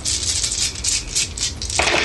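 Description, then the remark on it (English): A fistful of dice rolled for fire damage in a tabletop role-playing game rattles in a steady, bright clatter of rapid clicks for about two seconds, ending in a fuller burst as they spill out. No one speaks. “Fistful of dice.”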